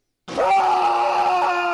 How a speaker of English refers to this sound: When Draymond inadvertently poked him in the eye, LeBron screamed out.